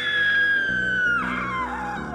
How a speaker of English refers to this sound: She darts her head around to look behind her and lets out a startled scream.